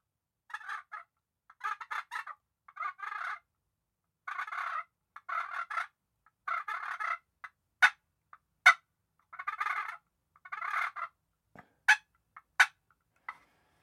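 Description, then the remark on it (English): Rolling, fluttery purrs from an all-walnut wooden turkey call come in short bursts of roughly a second, broken by sharp, high clucking pops, with no voices over them. “And then we got some purring on the all walnut.”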